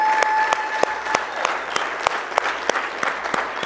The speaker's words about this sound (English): Young people, you're awesome. Give them a hand clap one more time, please.